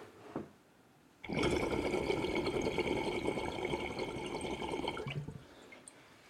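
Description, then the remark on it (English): Steady water bubbling and gurgling through a glass pipe for about four seconds as a person pulls on it to take a dab, fairly loud, starting abruptly after a brief click and stopping just as suddenly. “So now I'm going to pull on it. I'm going to take a dab through it.”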